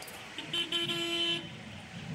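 Steady road traffic hums along as cars go by in Ashkelon, with a single sustained car horn honking for about a second in the middle before the low rumble of vehicles continues.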